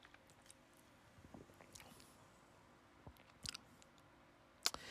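Someone quietly sips a fizzy soda while tasting it, with soft wet mouth clicks and small slurps, a brief louder sip near the middle and a sharp smack toward the end.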